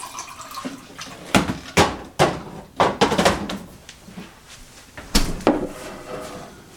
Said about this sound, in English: So I just took out the lemon wedge ice tray. And yeah, let's pour a glass of water. Got my glass here. And put some ice cubes in it.